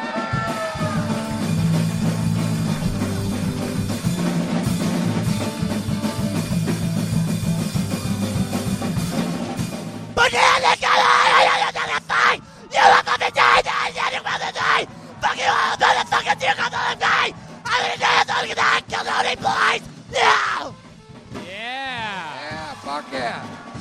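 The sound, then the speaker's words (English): A man demonstrates the vocals he did in a punk band, letting out loud, raw punk-style yelling in a string of harsh, ragged bursts with short gaps between them, following a stretch of steady music at the start. “I was a bass and I did vocals as well. They were a bass and and vocals. Yeah. Oh, wow, vocals, huh? Yeah, I just yelled.”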